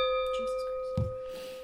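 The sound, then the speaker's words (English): A wine glass of dandelion wine rings with a steady, bright tone that lingers, broken midway by a dull low knock as the glass is bumped and nearly tips over. “as I recover from the heart attack from almost breaking my glass.”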